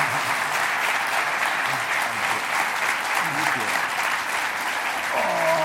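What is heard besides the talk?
audience applause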